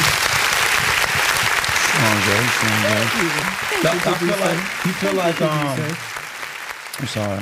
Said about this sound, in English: Shout and I Tyler just want to clap it up for that man.